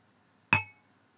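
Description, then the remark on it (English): Two glasses touch in a single bright clink in a toast, fairly loud, with a short ringing tone that fades within half a second. No one speaks. “Oh, we weren't doing the cheers?”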